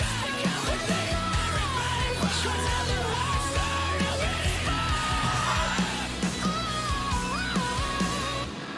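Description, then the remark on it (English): A loud, dense post-hardcore song plays throughout, with a melodic sung vocal line and harsh screamed vocals over heavy distorted guitars and pounding drums, steady. “I love it when he sings and … screams and they do it together, like, so well”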